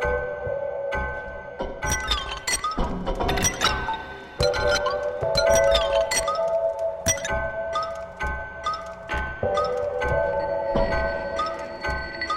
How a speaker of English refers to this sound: Well, the very first one was record the sound of ice in a glass and make something from it. It was that simple.